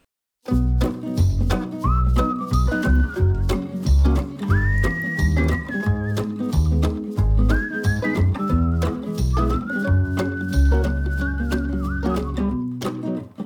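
An acoustic version of a folk song plays, with steady strummed guitar chords and a high, sustained whistle-like melody gliding over them at a moderate, even volume.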